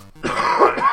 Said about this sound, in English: Let me clear my throat a little bit here.